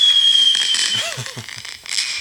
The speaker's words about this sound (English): Hold on. Let me press that sound effect again. Hold on. I got some more fireworks.